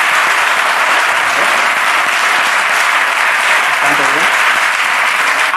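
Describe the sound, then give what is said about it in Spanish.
An audience at a show claps steadily throughout, a dense, even wash of many hands with no breaks, while a voice murmurs faintly underneath near the end; they are clapping if they have cried in the last five years. “Aplaudir si habéis llorado los últimos 5 años.”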